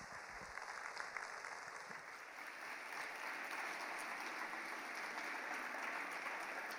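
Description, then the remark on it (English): Steady applause from a crowd welcoming a speaker at Rocky Mountain Calvary, a dense wash of many hands clapping at once, even and sustained without pause or voices on top. “So please, welcome Stephanie with a warm round of applause.”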